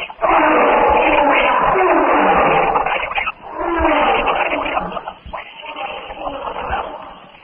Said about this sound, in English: All about, the jungle stirs to life. The chirping of birds, the screeching of parrots, the distant roar of the jungle beasts blends into the subdued hum that is the jungle noise by day.